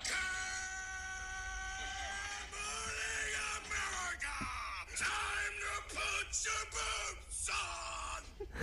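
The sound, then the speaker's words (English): A man yells loudly and continuously in a recording played as a phone alarm, a long strained shout that breaks into a series of shorter bellowing bursts toward the end, forceful with no other voices. “So he's just like yelling.”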